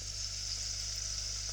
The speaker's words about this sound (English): It's gonna be the sauce if it's bubbling away on the stove top. Slowly defrosting.